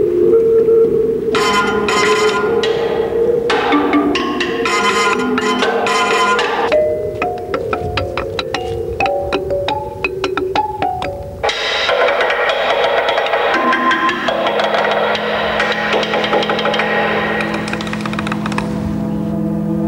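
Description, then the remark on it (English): Rhythmic percussion played on the hollow metal vents and openings of a barge, a steady run of booming, resonant hits in shifting timbres and tones, loud, with no voices. “I mean, there's one little clip where they're playing the opening holes and the vents in the barge, and they're getting these different timbres and tones as though he's playing a kettle drum in an orchestra.”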